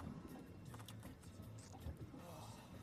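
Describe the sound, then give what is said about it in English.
A boat being tied up at a dock: a steady low motor rumble with lapping water and wind hiss, plus scattered knocks and faint, indistinct voices in the background. “Yeah, tying up the boat here.”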